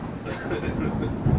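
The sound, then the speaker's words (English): Steady rain hisses in a broad wash of noise while a low rumble of thunder rolls underneath, swelling slightly near the end. “It's starting to rain.”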